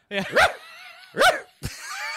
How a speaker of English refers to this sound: Oh, my dog is barking. My dog is barking right now. He's trying to shut you up.